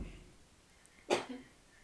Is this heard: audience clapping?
no